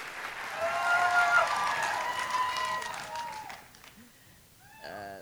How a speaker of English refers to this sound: Patti Smith was met by a standing ovation, an exuberant crowd at the Music Hall in Portsmouth when she stepped out to read from M Train.